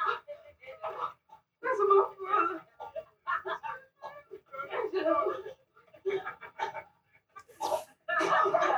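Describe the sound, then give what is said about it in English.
A man who has been beaten pants heavily in ragged, breathy bursts with short gaps, fairly loud, sounding exhausted and strained, with some voiced groaning mixed into the gasps. “Beaten man panting.”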